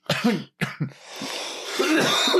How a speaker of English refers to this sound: Damn, I can't stop coughing. I'm going to wait on that because I don't want to kill him. It's good, like... It's very good. It's just killing me.